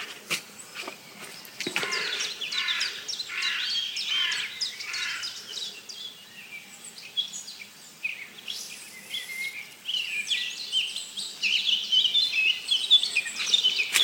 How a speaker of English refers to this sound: And there's a chiff-chaff. I've had a red start down in the valley earlier. And there'll be more red starts up on the hill. But most of this bird song is black caps.